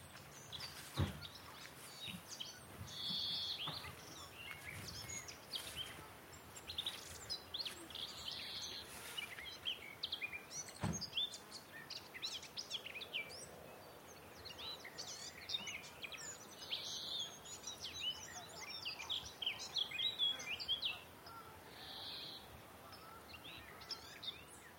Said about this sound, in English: That's the song of the garden warbler. It kind of just keeps going.